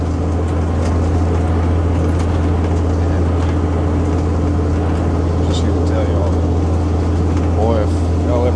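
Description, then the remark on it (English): An International cab-over truck engine with straight pipes and big chrome stacks rumbles loud, a deep, steady drone that holds throughout, with faint talking underneath. “It's a good old International cab mover.”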